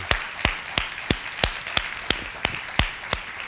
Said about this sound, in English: Would you clap your hands one more time for Jesus? Thank you, Lord.